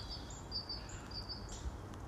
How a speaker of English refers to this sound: Oh, sounds of other things going on. Oh, wow. Yeah. Ooh. Other birds. Making other noises.